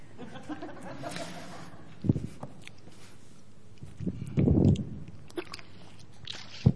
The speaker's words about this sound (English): I must need a drink of water.